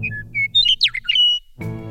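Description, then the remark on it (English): A Western Meadowlark sings one phrase, clear flute-like whistles tumbling into a quick, slurred warble, loud over a low background rumble, followed by a brief broad, buzzy sound. “Robin-sized, Western Meadowlarks are mottled white and brown on their upside, and breeding-age birds have brilliant, bright yellow undersides with a sharp V on the chest.”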